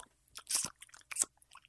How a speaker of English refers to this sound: I'm eating candy.